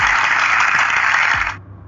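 A burst of audience applause, a dense, steady wash of many hands clapping that holds loud for about a second and a half, then cuts off abruptly, with no talking.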